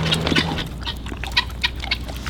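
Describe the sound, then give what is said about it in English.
A pig raised for meat on a homestead chews food as it is being fed, making irregular wet, crunchy smacks and snaps over a steady low background hum, with no one talking. “While some people might hear that sound of that pig chewing and think, ew, gross, chewing noises, I just hear the sound of bacon growing.”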